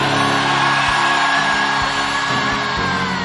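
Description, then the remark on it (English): A large audience at the end of a sermon shouts a loud, sustained amen together, a dense wall of many voices roaring at once with a few sharp thumps underneath. “And everyone shouted your loudest amen.”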